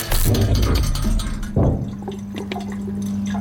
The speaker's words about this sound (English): The sounds of a hotel where you just sort of hear water running somewhere or dripping in the distance, and that just constant the buzz of the light. The buzz and hum of a light and maybe an air conditioner unit.